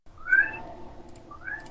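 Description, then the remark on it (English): A cat gives two short meows, one near the start and a second, softer one near the end, with a brief quiet pause between them and no talking. “You're my cat.”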